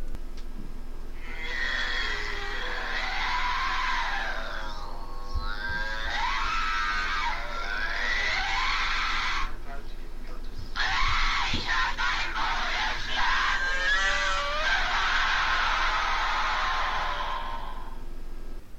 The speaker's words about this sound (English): She was in constant pain. More pain than you could care to imagine, and the priest actually recorded her sort of howling and crying in pain, and this is quite a disturbing recording.